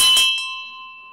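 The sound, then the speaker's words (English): A single metal bell strikes with a bright, clear clang, then rings on with a steady shimmering tone that slowly fades, with no one talking. “She also rang some bells for me. Again, the only difference in the sound comes from the materials. If I ring this, you'll hear the sound.”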